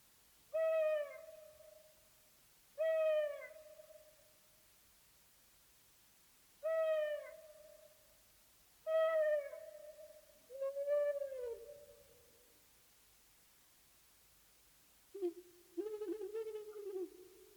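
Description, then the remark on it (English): An owl hoots five times in a clear, steady series about two seconds apart, then ends with a higher, wavering call. The hoots are fairly loud and stand alone with no talking. “associations do you have with the owl?”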